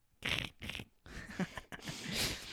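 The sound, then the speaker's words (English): A cat purrs in rough, breathy bursts: two short pulses, then a longer, steadier rumbling stretch. No one speaks. “Listen to the cat.”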